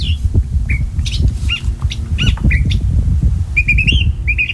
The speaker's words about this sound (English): And that bird you were just listening to is a California thrasher. It's sitting on top of a big bush at the end of Point Loma, which is just by San Diego. Cabrillo National Monument is here.